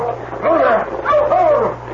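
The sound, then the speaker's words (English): A dog gives two drawn-out, whining yelps, half bark and half whimper, fairly loud, over a steady low background hum. “stop that dog, dear.”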